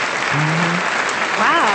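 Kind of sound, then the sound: crowd, applause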